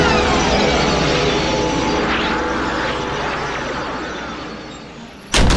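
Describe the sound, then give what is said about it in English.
A steady, loud rushing noise fills the scene, fading slightly before a door is closed with a sudden sharp thud right at the end. “Any last final words for him before we close the door?”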